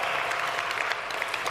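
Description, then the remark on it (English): A church audience applauds the makers of a video, a dense, steady wash of many hands clapping at once, loud, with no talking over it. “I think they deserve a round of applause, don't they?”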